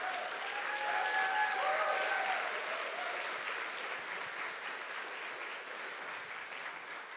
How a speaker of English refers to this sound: You guys can go ahead and be seated. Just to show your affirmation and encouragement of them, would you give them another round of applause?